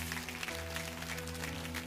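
A church audience claps as a clap offering to the Lord, a steady, dense patter of many hands, sustained throughout, with a low tonal hum, like held organ or keyboard notes, sounding underneath.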